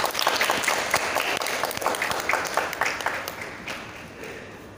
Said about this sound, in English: I'd like to invite the six speakers to please come to the front and take their seats. Please give them a round of applause, everyone.